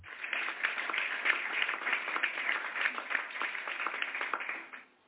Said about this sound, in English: So I like that clap.